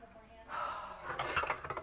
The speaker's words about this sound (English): I mean, I'm about to put all these pots and pans in this girl's bedroom.